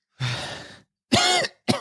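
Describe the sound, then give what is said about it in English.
Three harsh, wet coughs of someone coughing up water: a long raspy hack, a strained, voiced cough after a short pause, then a brief final sputter, with no talking. “She coughs up a lot of water when you get to her.”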